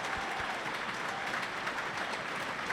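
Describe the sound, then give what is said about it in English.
Steady, sustained clapping from a large football crowd at Prenton Park during Tranmere Rovers against Barrow, applauding an injured player being stretchered off; a dense wash of many hands applauding at an even, fairly loud level throughout, with no voices standing out. “Everyone around us is giving him a warm round of applause.”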